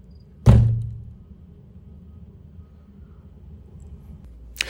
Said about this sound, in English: Am I going to podcast while I stand by the window and bang on it every 2 minutes? Good God.